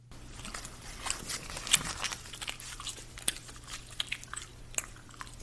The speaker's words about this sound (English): I think that was the watermelon gum. I believe that's what I was chewing that day.